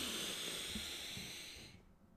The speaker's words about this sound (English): When you take in that deep breath, I want you to expand that belly because you are pouring into your body on this day. Ready? Inhale.